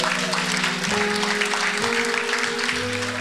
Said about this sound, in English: I love it when people clap and have no idea why they're clapping.